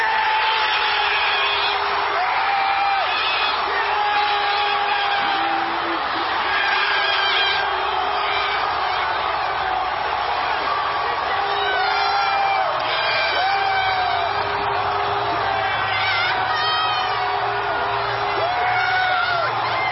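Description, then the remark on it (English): A huge crowd of baseball fans roars and cheers continuously as the last pitch is called a strike and their team, the Nationals, wins the World Series, with whoops, yells and shrill whistles rising above a dense, steady wall of celebratory noise that stays loud throughout. “Well, they just erupted in the cheering and the celebration.”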